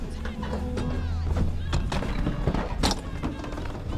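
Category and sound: impact, footsteps walking down stairs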